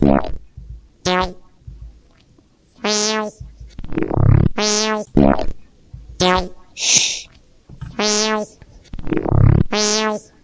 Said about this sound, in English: But I have a couple other versions of the sound of those two black holes colliding with one another. So here's a different, another interpretation.